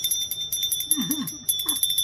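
A bell rings loudly for the Rosies in a rapid, continuous clatter of high metallic tones, pausing briefly before starting again, with a faint voice-like sound underneath.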